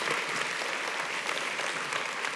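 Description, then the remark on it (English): An audience claps steadily, a dense, even wash of many hands without pause or swell, sustained at a moderate level and with no voices audible over it. “I want to ask you can clap.”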